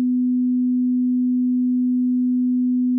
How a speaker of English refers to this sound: Its closest relative is a sine wave, and a sine wave which sounds like this